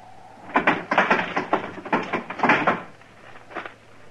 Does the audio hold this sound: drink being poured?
no